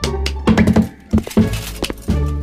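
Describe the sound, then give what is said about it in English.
A cup is banged over and over in a prison cell in uneven bursts of hollow, knocking thuds, some quick clusters and some spaced out, fairly loud with no talking. “Sully has found himself a cup and he's just like... over and over and over again.”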